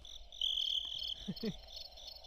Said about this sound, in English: Okay. Those are crickets, everyone.